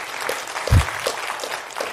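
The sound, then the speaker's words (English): A crowd claps steadily, a dense patter of many hands at moderate volume, with one low thump partway through. “An applause, please.”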